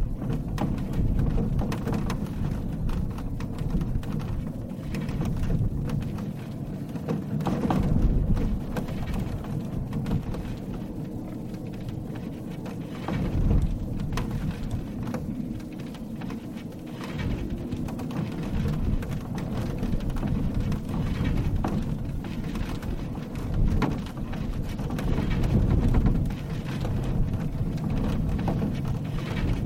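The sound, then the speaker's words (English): An old chest and reclining chair squeak and rattle in heavy wind blowing through the Great Salt Lake Desert in Utah, under a continuous low roar of gusting air that swells and eases across half a minute, with no voices. “Like an old chest in a reclining chair that Scott Smallwood found squeaking and rattling in a heavy wind blowing through the Great Salt Lake Desert in Utah.”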